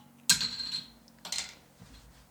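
A beer bottle that is not a twist-off is pried open with a bottle opener: a sharp metallic pop with a short fizzing hiss, followed by a couple of softer clinks, with no talking.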